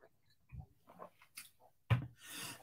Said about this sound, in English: Apologies for my cough.